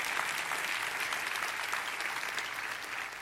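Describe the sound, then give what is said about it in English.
An audience claps hands in a steady, dense burst of applause, many overlapping claps forming a continuous crackling wash that stays at an even, moderate level throughout with no talking. “Come on, clap your hands and say amen to that.”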